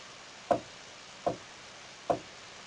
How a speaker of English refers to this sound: That was a quite a loud knock, because my microphone's actually on the table.